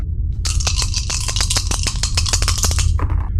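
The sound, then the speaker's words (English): Four dice rattle and clatter across a hard surface in a quick, irregular burst of sharp clicks, settling with a few final taps over a steady low hum, landing on a 6, two 5s and a 1. “A 6, 2 5s, and a 1, so... Okay, that is a success.”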